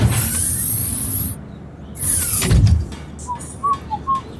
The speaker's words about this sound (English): And then suddenly the starship door opens.